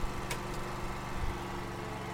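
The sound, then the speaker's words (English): A lawn mower engine drones steadily with a low, even hum and faint higher whine, broken briefly by a couple of short clicks near the start. A landscape team mows the green belts and lawns of the Village Homes community on a Wednesday. “Mowing.”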